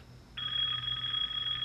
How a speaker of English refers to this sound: So do I read the number and dial it on the phone?